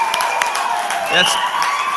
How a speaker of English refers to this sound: So why don't you just stand and give a cheer? Some of you just kind of just stand and why don't we just cheer together? Can we do that?